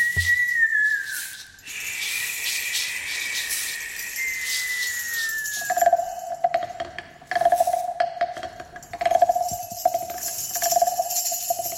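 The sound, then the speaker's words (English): A high, thin whistling like wind over a mountain slides slowly downward in pitch, then settles into a lower tone that swells and fades in steady pulses, with no talking. “Wind whistles over the mountain.”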